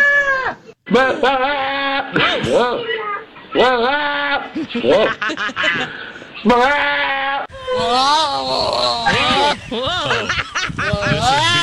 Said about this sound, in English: So there's a goat. Goat. Yep.